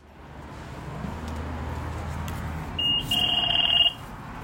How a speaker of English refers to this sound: that sound of a $2 bus fare payment will cease to exist come July 2023